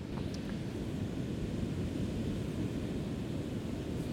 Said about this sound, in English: So right now we're next to a beach, so you got the waves crashing. You got the birds, the crabs crawling on the ground, and you got the insects, some wind.